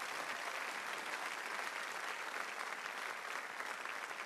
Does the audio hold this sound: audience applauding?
yes